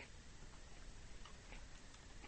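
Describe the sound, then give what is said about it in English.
Crunchy chewing on a s'more-flavored cookie (a Smorio): a series of soft, irregular crackling bites over a steady hiss, with no one talking. “That's a great crunch. Ooh. Ooh, the worst form of ASMR.”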